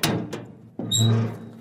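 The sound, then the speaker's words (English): A tiny door, round a corner from a museum, opens with a sharp clunk followed by a short, squeaky creak of hinges. No one speaks. “We're going out of the museum and round a corner, and now we're at a tiny door that even for me looks too small.”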